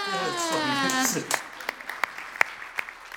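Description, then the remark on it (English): After a brief stretch of voice, hands clap in a steady, moderately paced rhythm, about eight or nine sharp, close claps that fill the rest of the moment. “Should we clap hands?”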